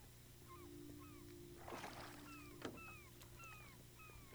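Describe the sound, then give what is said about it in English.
Seagulls following a boat call repeatedly in short, descending cries, moderately loud and steady in rhythm, over the boat's constant low engine hum with a brief rush of water splashing midway. “Some seagulls follow the boat.”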